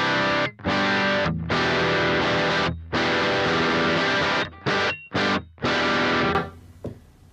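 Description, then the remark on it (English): Electric guitar played through an overdrive pedal, with switch number 2 down for the overdrive setting, plays loud, thick chords in short bursts with brief gaps between them, then lets a final chord ring out and fade. No one speaks. “So with number 2 down, it's more of the overdrive.”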